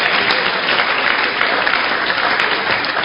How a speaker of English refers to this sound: Oh, if you are clapping, clap.